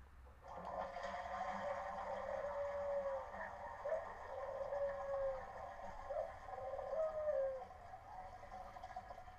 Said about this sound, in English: And yeah, you're correct on that one. That would be a dove and flushing toilet.